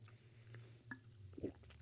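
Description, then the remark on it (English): Someone quietly sips coffee: soft, wet mouth and swallowing sounds with a couple of brief clicks, over a low, steady hum and no talking. “Need a drink. Hang on.”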